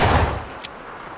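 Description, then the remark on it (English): A gunshot rolls out as a low, booming rumble that fades slowly, echoing off hills with a delay, with a faint sharp crack afterward. No one speaks. “Is that gunfire echoing?”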